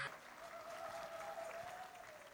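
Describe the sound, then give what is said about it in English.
Steady applause from an audience welcoming a special guest fills the whole stretch, a dense, even patter of many hands clapping at a moderate level, with a faint sustained tone running underneath. “Shall we, with a round of applause, welcome our special guest”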